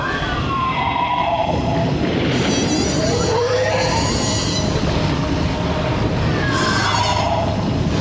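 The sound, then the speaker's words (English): A heavily processed scream effect made from James Cameron's own screams, manipulated in post-production. Harsh, metallic shrieking swells and wavers in pitch over a constant loud roar, continuing for about eight seconds with no one talking. “Apparently that was James Cameron's own screams.”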